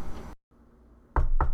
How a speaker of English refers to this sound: Who's that knocking at the door?